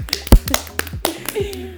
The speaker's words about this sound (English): Round of applause.